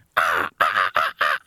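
Four harsh, raspy crow caws ring out in quick succession with short gaps between them, loud, with no other sounds or voices.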